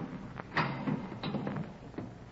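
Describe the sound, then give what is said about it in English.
A heavy door latch is turned, giving a few dull clunks and clicks spaced over a couple of seconds, fairly quiet, with no voices. “I glanced at my watch at 11:15, and right after that, heard the heavy latch on the door being turned.”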